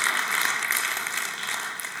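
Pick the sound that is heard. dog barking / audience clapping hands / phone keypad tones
audience clapping hands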